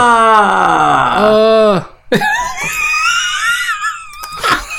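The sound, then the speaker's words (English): A loud, over-the-top theatrical movie scream, drawn out with a wavering pitch that swoops downward, then breaks off and is followed by a second high, strained wail. “Now, why hasn't that replaced the Wilhelm scream?”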